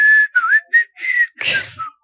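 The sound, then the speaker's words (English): A person whistles a short, bouncy tune that the cartoon seven dwarfs whistle, a handful of clear notes with brief gaps, broken near the end by a breathy burst of noise before one last note. “Or whatever they whistle.”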